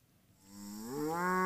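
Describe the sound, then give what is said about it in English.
A single cow moos on a cattle farm in Iowa, a low bellow that swells and rises in pitch, rich in harmonics, growing louder toward the end with no talking over it. “they drive into, well, the sunrise, and ready to become enlightened cattle farmers.”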